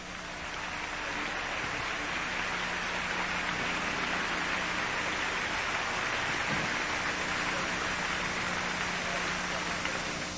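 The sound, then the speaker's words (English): An audience at a meeting applauds the organizers steadily for about ten seconds, a dense, even wash of many hands clapping at a constant loudness without fading or breaks. “Why don't you give them a good hand right now?”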